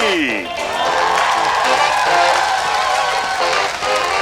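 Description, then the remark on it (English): A studio audience on Planet TV, like a TV show laugh track, breaks into loud, sustained clapping and cheering that fills the whole stretch, following a brief swooping tone at the very start. “There's a creepy voice coming from the sky and invisible people clapping.”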